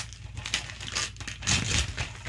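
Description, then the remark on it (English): Festive 'Jingle All The Way' birthday wrapping paper being torn open and crumpled as a present is unwrapped, a continuous rustle of crinkling and ripping for a couple of seconds, with no voices. “Oh, wow, what have I got here? I like the wrapping paper.”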